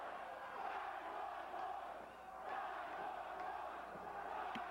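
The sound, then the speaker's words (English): A wrestling crowd chants loudly for the wrestler 9-1-1, a dense, sustained roar of many voices with faint rhythmic pulses and a brief dip in the middle. No one speaks over it. “Wow, crowd chant big time for 9-1-1.”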